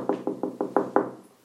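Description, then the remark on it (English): In the morning, someone's brother knocks six firm times on their door in a quick, steady rhythm, moderately loud, with no voices, then quiet. “But anyway, my brother knocked on my door.”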